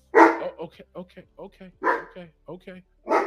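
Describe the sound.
Dogs bark loudly, three sharp barks spaced out over a few seconds, with a person talking in the gaps between them.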